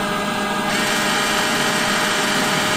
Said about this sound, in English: And it even senses when it's on carpet and it'll turn up the power. And it's controlled by Alexa as well. So, Alexa, turn the vacuum on. Okay, starting the cleanup.